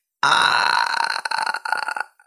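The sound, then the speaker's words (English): A single long, loud burp, rumbling steadily for about two seconds before breaking up and trailing off, with no talking around it. “I'll burp it just to be fair.”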